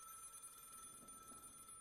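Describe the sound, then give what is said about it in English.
A telephone in a flat rings steadily and faintly with a continuous electronic tone, unanswered, with no voices present; the call is made at 6:15 a.m. from a call box on Calworth Street. “He telephoned his flat. But she didn't pick up.”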